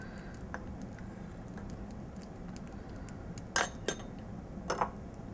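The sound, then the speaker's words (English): Melted clarified butter pours with a soft, steady low wash while metal utensils clink against a pan, a couple of sharp taps followed by a quick double clink near the end, in the Good Housekeeping Kitchen. No one speaks. “Okay, I think we're just about ready to pour.”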